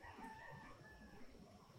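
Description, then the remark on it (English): A rooster crows, a single drawn-out cock-a-doodle-doo with wavering tones over low background rumble, no voices present. “That rooster was perfectly timed. Rooster's like, wake up, y'all.”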